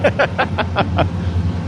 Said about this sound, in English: I do want to wait for this train to pass. Yes, it is incredibly close. We're directly behind the train tracks.